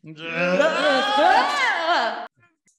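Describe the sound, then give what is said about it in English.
A group of voices yells together on cue, making a sound of falling through time, in one sustained, wavering cry with pitches sliding up and down like a long fall, for about two seconds before cutting off abruptly into silence. “And I'm going to need everybody to do a yell falling through time sound on 3, 2, 1.”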